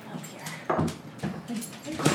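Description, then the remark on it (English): A puppy whimpers and whines in short, high-pitched bursts, with a few louder yelps breaking through the soft, continuous crying. “Puppy can't get you up here.”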